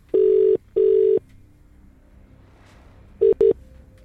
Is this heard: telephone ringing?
yes